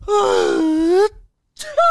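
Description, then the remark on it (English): A voice mimics a big sneeze: a loud, drawn-out, slightly rising wailing "ahh" for about a second, a brief pause, then a sharp breathy burst as the vocal sneeze lands. “Like, it's do you sneeze with your whole body? Do you go...”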